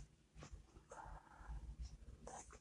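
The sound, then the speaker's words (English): A dog, BJ, snuffles and shuffles around, with a few short snorts and soft rustling movements over low background noise; nobody speaks. “Oh, and I think I got a special guest coming in. Look like the dog, BJ.”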